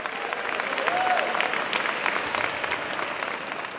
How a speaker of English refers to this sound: And at the end, at the part where he concludes with, "Free at last," you can hear the applause on the tape and in real life. Everybody is up on their feet.